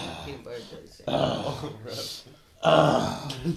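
Two loud, raspy bursts of heavy breathing, each a long, gravelly huff with a throaty, almost growling edge, separated by a brief softer pause.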